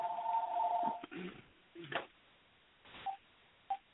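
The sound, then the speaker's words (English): An electronic telephone rings with a steady, warbling two-tone burst lasting about a second, followed by muffled rustling and two short, faint beeps. No one speaks. “Hang on a second, the phone's ringing.”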